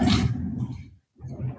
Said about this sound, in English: Gotta love wheels on the chair.